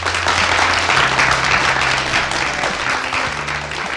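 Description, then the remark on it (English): Steady crowd applause for guest Marc Mekki on the Learnability Show, a dense wash of many hands clapping at once, loud and sustained throughout with no voices standing out above it. “So can we have a big round of applause for Marc, Mekki?”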